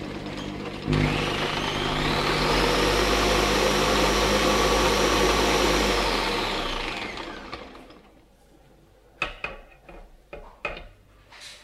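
A food processor blends hummus with a touch of cold water added, its motor roaring with a loud, steady whir for about six seconds, then winding down and fading out, followed by a few sharp clattering knocks.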